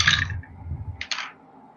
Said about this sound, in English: And since Treasure is dancing with this one, let me get my sneak attack dice here.